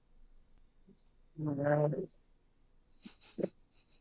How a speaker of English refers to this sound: Oh, I'm blowing my nose. Hold on.